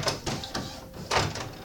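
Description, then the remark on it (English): A printer running through a brief job, with bursts of mechanical whirring and clattering rising and falling over under two seconds, steady and fairly loud, with no voices. “That was my printer. It's now finished talking to me.”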